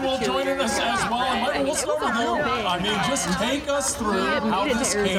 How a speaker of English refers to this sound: The crowd went nuts once again here in person